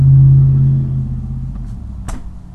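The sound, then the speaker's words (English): A loud truck rumbles past, its deep engine drone strongest at first and then fading away over a couple of seconds, with no one talking. “That truck? Yeah. Oh. That was really loud.”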